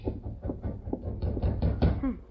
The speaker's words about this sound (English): Rapping on the door. Can't be Father.